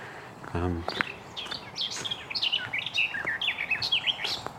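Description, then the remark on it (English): A garden warbler sings in a woodland: a rapid, rambling warble of bright, liquid phrases that runs without pause, clear, with a brief low buzzy sound near the start. “possible garden warbler here. Yeah, it's a garden warbler.”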